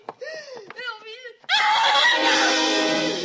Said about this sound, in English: When I grabbed her, she didn't struggle. Just shrieked over and over. When I let her out of the room, she was still shrieking. And all of a sudden, she stopped.